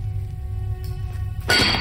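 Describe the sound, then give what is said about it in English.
A low, steady rumble with a faint metallic hum, then one sharp, loud clang as a sledgehammer strikes the blunt end of an iron rock drill held against a rock face in a cavern, the bright ring sustaining to the end. “I heaved the iron drill to the rock and held it in place while Bangman struck the blunt end with a sledge.”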